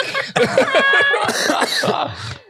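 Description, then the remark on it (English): A loud coughing fit: harsh, rapid coughs and throat-clearing rasps run together for a couple of seconds with barely a pause between them. “No, I'm really coughing.”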